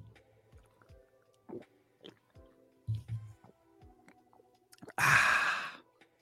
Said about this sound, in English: Make sure you slurp right into the mic. Oh, I mean, we can do that. Let me get this mic nice and close here.